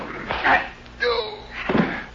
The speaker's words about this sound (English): I wonder where he came from. Sounded like a sliding door. And obviously, one of those panels slides back.